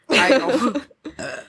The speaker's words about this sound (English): I can't even speak. I, like, burp every other word. Something about them pumpkin ales.